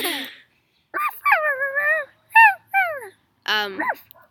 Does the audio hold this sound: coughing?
no